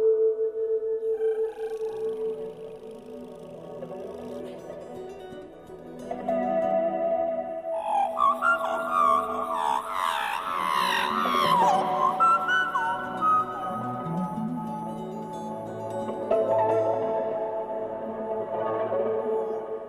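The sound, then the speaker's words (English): A person imitates magpie song, producing a continuous stream of warbling, chortling notes with quick pitch glides and squeaky flourishes, loudest and busiest midway through, with no speech. “So how did you come to sing like a magpie?”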